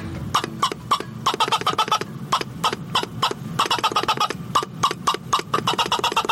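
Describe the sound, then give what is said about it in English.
A plunger-operated squirrel call, used to make sounds that squirrels answer or come to, sounds a rapid run of sharp, raspy chattering barks in quick bursts, pausing briefly midway and then resuming, fairly loud with no talking. “This is a plunger-operated squirrel call, and I'll make a couple of sounds that squirrels will either answer or they will come to.”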